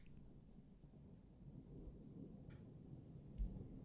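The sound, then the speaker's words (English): A low, distant thunder rumble rolls continuously for a few seconds, quiet and muffled, with faint brief ticks or crackles on top and no talking. “Got some thunder back.”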